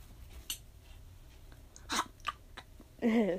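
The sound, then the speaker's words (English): Someone chews and eats paper: crunching, crisp bites with a few irregular crackly bursts over a faint low rumble, ending in a muffled voiced grunt as the chewing continues. “You're supposed to break the pencil and eat the paper.”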